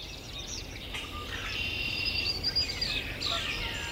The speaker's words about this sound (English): So who are we listening to here? We're hearing northern cardinal, blue-gray gnatcatcher, warbling vireo, red-winged blackbird, swamp sparrow, yellow warbler, common grackle, catbird, common yellow throat, Canada goose.